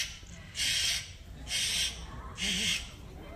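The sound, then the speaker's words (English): A small parrot named Pogo, asked to show off its scream, lets out three loud, harsh screams in close succession, each lasting under half a second, with brief quiet pauses between them. “You wouldn't believe how loud even a little parrot like this can scream.”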